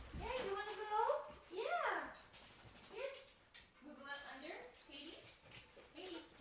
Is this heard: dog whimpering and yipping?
yes